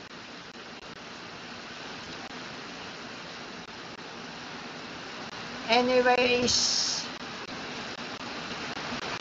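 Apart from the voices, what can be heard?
heavy rain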